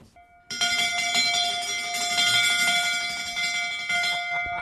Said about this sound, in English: There's so much brass, including, of course, the big brass bell. Can we hear the bell? No problem at all.